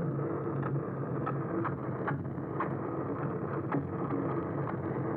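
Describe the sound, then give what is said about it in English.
A boat engine recorded underwater in the ocean drones steadily, a dense, muffled rumble holding constant throughout, with faint scattered clicks and crackles riding on top. No voices. “So like boats, which is actually the most pervasive sound in the ocean.”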